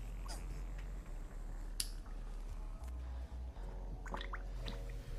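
Bubbles being made: soft, irregular wet pops and drips scattered over a steady low hum, fairly quiet, with a few sharper bright blips near the middle and end.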